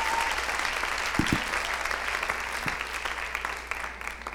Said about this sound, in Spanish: Un aplauso